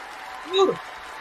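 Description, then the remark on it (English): A steady wash of clapping, like an applause sound effect, runs through the whole clip, with a short rising-and-falling vocal whoop breaking through midway. “Yes, applause, baby.”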